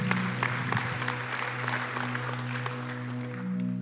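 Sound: audience clapping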